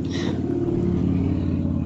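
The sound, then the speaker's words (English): A car engine rumbles steadily outside a window, a low, muffled drone with a slight rise in pitch, holding at a constant moderate loudness throughout with no voices. “I did pick up that noise, so I'm going to make sure he knows that. Are you right by a car? Oh, I'm by a window.”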